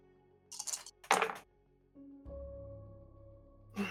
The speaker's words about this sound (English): Three successes. I heard that. Yeah, I rolled some dice.